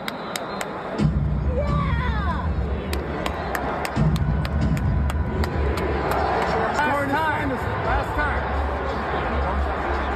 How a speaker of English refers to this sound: She's clapping in his face. It's hard to hear, so go ahead and fade it out. It's hard to hear.